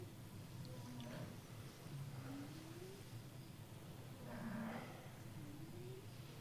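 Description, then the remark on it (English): A dog named Bessie snoring loudly: low, rumbling breaths with a slightly rising, droning pitch, about two snores a few seconds apart over a steady background hum. No one is talking. “A lot of snoring in this room. It's just one story, but it's loud.”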